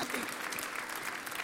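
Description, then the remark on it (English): A church audience claps for the Lord in a steady, dense wash of applause that holds at an even loudness throughout, with a faint murmur of voices underneath. “Let's clap for the Lord.”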